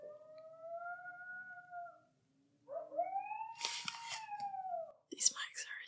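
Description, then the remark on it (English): Long wavering howls rise and fall in pitch, overlapping in a drawn-out chorus, then break into a burst of sharp, high yips and cries at the end. No one speaks. “I think our mics just picked up some freaking coyotes.”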